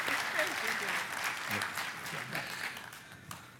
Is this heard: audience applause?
yes